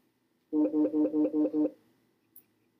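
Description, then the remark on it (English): A mobile phone set to silent vibrates in six quick, evenly spaced buzzing pulses, a moderately loud mechanical hum that stops abruptly, followed by quiet room tone and a faint click. “I have my phone on silent and it's vibrating.”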